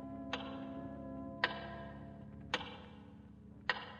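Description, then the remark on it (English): A big clock, seen from a jail cell window with its face lit by electric light, ticks slowly and steadily, four loud, resonant ticks about a second apart, each ringing briefly over a low background hum, with no voices. “And again, you stare out the window at the big clock.”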